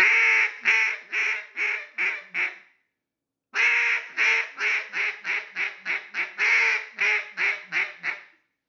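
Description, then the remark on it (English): Light hen quacks blown on a duck call: a short run of about six quacks, a brief pause, then a longer, steady string of a dozen more, loud with no talking. “He kind of hit that light hen.”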